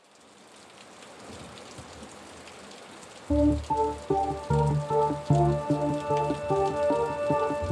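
rain falling

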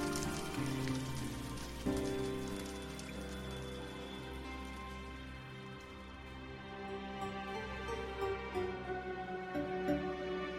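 rain falling

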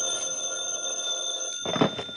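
telephone bell ringing

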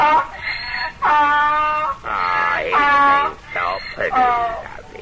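donkey braying

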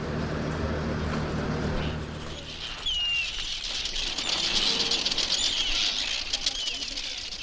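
arctic tern colony calling

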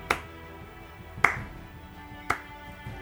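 light clapping

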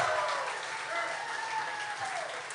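audience applause and cheering

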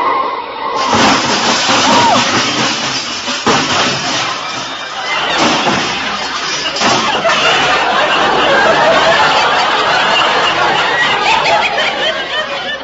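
car crash sound effect

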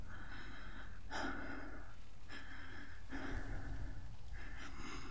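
sudden gasp

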